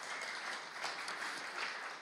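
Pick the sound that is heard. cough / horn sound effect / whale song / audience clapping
audience clapping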